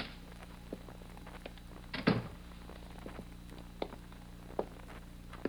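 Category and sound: household object, apartment door opening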